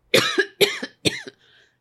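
Three quick, harsh coughs in a row, fairly loud, evenly spaced about half a second apart, followed by a faint trailing breath, as someone turns on a microphone.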